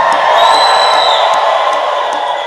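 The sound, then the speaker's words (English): A large crowd screams and cheers loudly and continuously, a dense wall of high-pitched voices and whoops sustained for a few seconds before easing slightly. “Let me hear you scream.”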